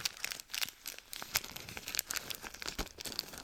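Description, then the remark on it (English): Crunchy, crackly chewing of M&M candies right into the microphone, with irregular bursts of crisp, bright snaps and crinkles over about three seconds and no talking. “I'm, like, chewing right into the microphone.”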